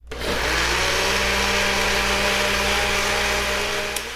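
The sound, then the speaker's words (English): A blender whirs loudly and steadily with a gritty, rattling churn of a set of metal dice grinding inside, turning them into sand-like dust, running continuously from start to finish with no voices. “All right, and I'm going to turn the blender on.”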